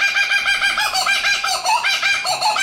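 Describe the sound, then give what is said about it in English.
A kookaburra, an Australian bird, gives its laughing call, a loud, continuous run of rapid, rising and falling cackling notes that carries on throughout without any pause or voices. “That's a kookaburra. That is an obnoxious bird.”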